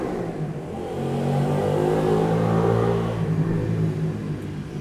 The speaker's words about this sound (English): I don't know whether you can hear that, but for me, the motorcycle noise was just way too loud.